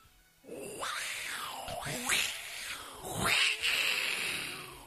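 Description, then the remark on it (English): Someone imitates a cat, letting out a string of three or four drawn-out, wailing meows that rise and fall in pitch, fairly loud with no other talking. “is doing cat signs.”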